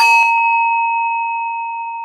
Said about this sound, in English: But you can do it, we do it all the time. You can do it with some Tibetan singing bowls.